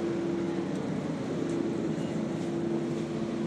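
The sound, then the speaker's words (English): A steady, continuous engine drone inside a bus, with a low rumble and a constant humming tone that holds evenly throughout, with no talking. “So we are here now, safe on the bus, going in for another day of greatness for Black Pumpkin.”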